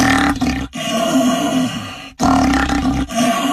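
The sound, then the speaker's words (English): A person imitates a lion's roar through an empty paper towel roll, using a snort and a hiss, giving a loud, hollow growling roar in three back-to-back bursts separated by brief gaps, with no talking. “And he explains here in this little thing how you can imitate a roaring lion.”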